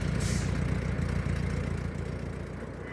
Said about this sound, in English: Love the sounds of those cars. Damn.